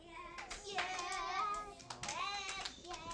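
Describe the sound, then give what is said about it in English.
A group of children clap their hands in response to a call to clap twice if they can hear, scattered sharp slaps ringing out amid a steady babble of young voices talking and calling out over each other. “Clap twice if you can hear me.”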